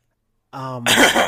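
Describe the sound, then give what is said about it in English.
A short voiced grunt leads straight into one loud, raspy, real cough after a moment of silence. Nobody speaks. “I want the fake cough, but I'm scared of a fake cough. I'm a cough for real.”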